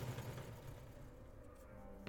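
An already hot Model T engine, started by hand crank, comes back to life with a steady, low, chugging rumble and a faint mechanical rattle as the car speeds off, then a brief clunk right at the end. No voices.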